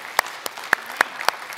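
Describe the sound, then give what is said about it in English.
Applause at a worship service, sounding as a string of six sharp, evenly spaced claps in a steady rhythm, crisp and fairly loud over a faint background, with no one talking. “So if you are here on site, would you put your hands together and welcome in our online family that are joining us here today?”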